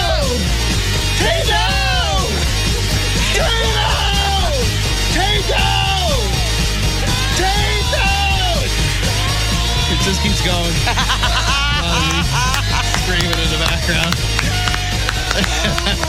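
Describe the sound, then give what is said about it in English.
Loud, continuous vocal yelling and screaming with rising and falling pitch in the background of an advert, layered over a busy, dense backdrop of other voices and sound that fills the whole stretch. “Keeps going. Screaming in the background.”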